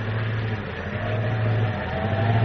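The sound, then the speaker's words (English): A car engine drones steadily at a low pitch beneath a constant rushing, hissing roar of wind and blowing dust as the car heads west through a blinding dust storm 15 miles from Carson City, with no voices and no break in the sound. “15 miles from Carson City, heading west in a car, Carl Schroeder, Lois Lane, and Manfred, Schroeder's henchmen, have run into a blinding dust storm.”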